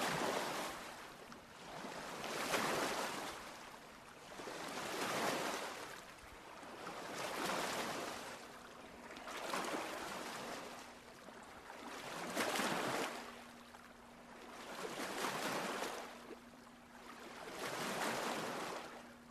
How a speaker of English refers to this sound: But the waves continue pushing you under and pulling you further away from the land.